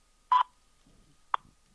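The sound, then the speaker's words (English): A U.S. Naval Observatory Master Clock time-signal tone sounds alone: a loud, steady, mid-pitched beep lasting a split second, then after about a second a much shorter, sharp tick at the same pitch, with faint murmur between. “U.S. Naval Observatory Master Clock. At the tone, Eastern Daylight Time.”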